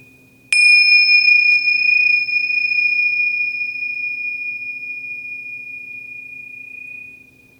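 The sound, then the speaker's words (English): A single clear strike of a meditation bell, rung to start a meditation, its bright, pure tone ringing out and slowly fading over several seconds amid quiet. “I'll ring the bell to get the meditation started and ring it again at the end of the meditation.”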